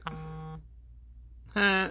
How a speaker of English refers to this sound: Sorry, I forgot to put my phone on vibrate.